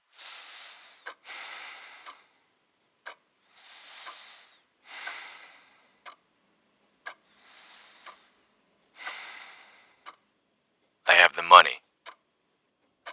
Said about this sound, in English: On the other side, there was nothing. Just breathing.